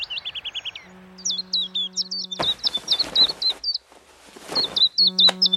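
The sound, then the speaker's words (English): Gangs of old and young swifts scream around a town on a sunny summer evening in rapid, shrill, high-pitched bursts, calling repeatedly in quick sequences over a steady low hum, with a brief noisy rush in the middle. “And last of the spring arrivals for me is the swift, which really marks a sunny summer evening with gangs of old and young swifts screaming around the town, making a screaming noise like a squadron of fighters.”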